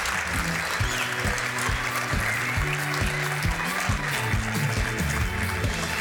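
An audience claps steadily for about six seconds for a guest at the end of an on-stage conversation, a dense, even wash of applause with no break, while a low stepping musical line plays underneath.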